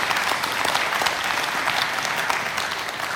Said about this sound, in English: So let's just give him and us a round of applause and encouragement.